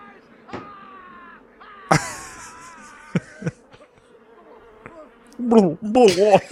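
A dense, droning buzz of a swarm of bees engulfing a man, steady, with a few sharp thumps and clicks breaking through, then wailing vocal sounds rising over the swarm at the end.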